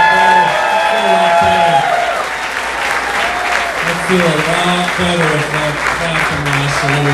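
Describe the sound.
Sustained applause from a large audience at a live comedy show at the Comedy Store on the Sunset Strip fills the room, a dense wash of clapping with some cheering, while a man's voice talks over it through a microphone.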